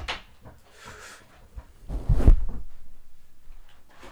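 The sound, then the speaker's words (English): Two people munching on chicken nuggets: soft, irregular chewing and mouth noises, swelling into a louder, thicker crunch about halfway through before settling back to quieter chewing. “I can't really hear him because I'm munching and he's munching.”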